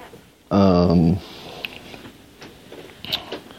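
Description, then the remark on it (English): A single loud, muffled burst from the throat, held back behind closed lips so it comes out as a short voiced grunt, followed by quiet room tone with faint soft sounds. “Still suppressing, honestly.”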